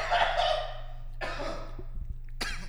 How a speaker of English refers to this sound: Fuck, I just coughed in the mic. Swallowed wrong.